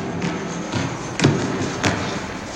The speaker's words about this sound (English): They're the first to enter the scene. Their shoes echo through the space as they hit the floor.